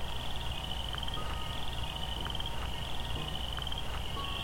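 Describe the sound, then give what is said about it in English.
A steady chorus of chorus frogs trilling continuously in an evening meadow, a thin high-pitched pulsing wash with a few faint brief calls scattered over it, no voices. “And draped behind this soundscape, the songs of chorus frogs.”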